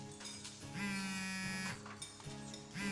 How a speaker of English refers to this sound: A little after midnight, my phone buzzed.